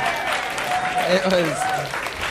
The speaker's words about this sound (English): You're welcome to applaud for that rhyme.